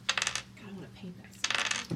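Three dice clatter across a hard tabletop in two quick rattling bursts separated by a short pause, fairly loud, ending with a soft thud. No one speaks.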